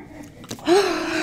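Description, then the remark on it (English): A strained gasping breath of a woman having an asthma attack: a short huff, then a long wheezy inhale with a thin whistling tone, labored and struggling for air. “about 30 seconds in, she starts having an asthma attack. Her breath gets more and more labored until she's gasping, struggling to get the air she needs.”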